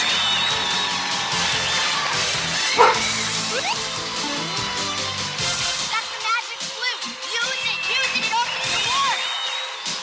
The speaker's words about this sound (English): Is that fucking that dog's in here again? Jesus.